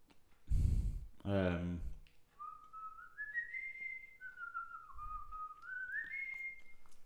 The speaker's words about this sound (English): Whistle something. That was a clue.